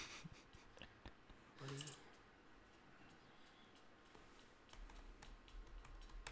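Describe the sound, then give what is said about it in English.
Quiet, irregular clicking of keys on a computer keyboard, a steady patter of small taps with brief pauses, against a faint low background hum. “What are you typing?”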